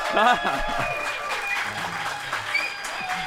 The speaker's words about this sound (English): You miss this? I cannot miss what I've never had. People clapping for me, you know? Amazing. I wouldn't get used to it.